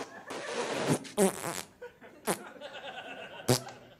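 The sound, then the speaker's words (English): A long, buzzy, sputtering fart noise in a comedy sketch that ripples for about a second, followed by a few shorter bursts and pops, fairly loud with nothing else going on. “Who's a healer who farts on people.”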